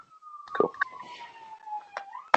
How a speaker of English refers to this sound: Sirens in the background. It's all kicking off here.